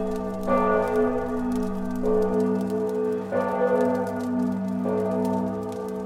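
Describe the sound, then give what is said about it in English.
Church bells toll in a slow, steady sequence, each deep strike blooming into a long, shimmering hum that overlaps the next, with no voices present. “To the tolling of the bells, bells, bells, bells, bells, bells, bells.”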